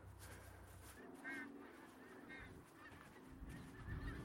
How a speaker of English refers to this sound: The call of the wild goose. The call of wild geese, pink-footed geese, which there are thousands here, I think, out across this marsh.